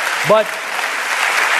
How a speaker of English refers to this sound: Oh, yeah, and the applause ceases.